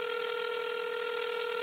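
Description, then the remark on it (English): A touch-tone phone keypad tone rings out clear as a cell phone number is dialed, one steady electronic beep held without a break for under two seconds, with no voices. “Sometimes I would just call his cell phone just to hear his voice.”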